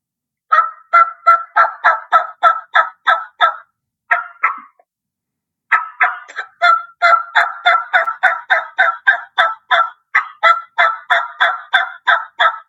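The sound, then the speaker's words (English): A turkey call, played as basic yelps, runs through steady series of yelps, with a brief pause partway and a few short clucks before the yelping resumes in a fast, even rhythm. Loud and alone, no voices. “Basic yelps, like I did. I always throw a few clucks in there in the middle of it and yelp or kind of just break it off.”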